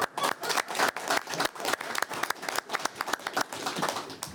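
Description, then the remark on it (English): People applaud steadily after an election by acclamation at a meeting, dense overlapping claps sustained for several seconds at moderate loudness, with no talking over it. “If you get them to applaud for you, you got to get them to applaud for everybody, right?”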